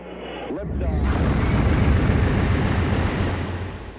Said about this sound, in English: A spaceship taking off has a low pitch.